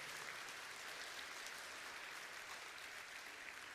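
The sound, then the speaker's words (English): A church audience claps steadily for the choir during a service. The clapping is a dense, even wash of many hands, sustained at a consistent moderate level with no voices standing out. “Give them a hand.”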